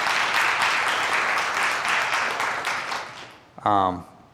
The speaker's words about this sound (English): Can we clap for God who still speaks? Come on.